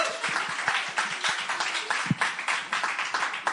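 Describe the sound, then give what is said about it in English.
A crowd applauds a speaker before her talk, many hands clapping at once in a dense, continuous patter with no pauses, bright and fairly loud throughout. “Should we give her another round of applause?”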